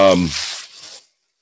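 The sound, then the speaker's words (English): A brief voice gives way to a burst of harsh, crackly tearing and crinkling of plastic packaging, loud at first and then thinning out before stopping abruptly after about a second. “Yeah, sorry guys, there's a ton of background noise here. But there's a lot of packaging.”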